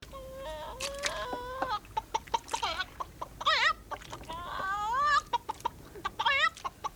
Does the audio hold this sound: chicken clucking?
yes